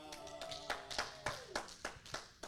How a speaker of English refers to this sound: Clap for Jesus.